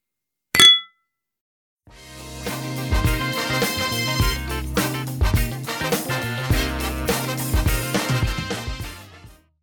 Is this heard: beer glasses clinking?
yes